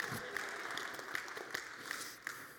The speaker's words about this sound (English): I don't like clapping in church, although if you clap, I'm not judging you.